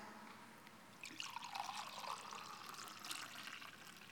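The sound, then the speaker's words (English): Liquid is poured into a cup, beginning after a brief pause and continuing as a steady, gentle splashing trickle for a few seconds. It sounds fairly quiet, with no voices. “In the same way, he took the cup and he blessed it and he poured it out.”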